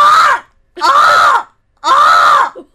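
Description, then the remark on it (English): A person imitates a seagull with three loud, nasal, wailing cries, each arching up and then down in pitch, separated by short pauses. “Let's hear your seagull impersonations, everyone.”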